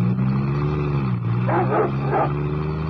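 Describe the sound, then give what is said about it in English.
Guard dogs running loose in the grounds bark twice in quick succession, deep, over a steady low mechanical hum that runs through the whole clip; no one speaks. “That sounded like the Hound of the Baskervilles. Guard dogs.”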